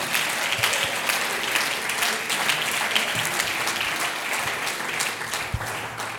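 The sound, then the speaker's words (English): An audience claps their hands to praise the Lord in sustained, dense applause, a steady crackle of many overlapping claps with no clear rhythm, loud and continuous for several seconds. “Oh, clap your hands again and praise him.”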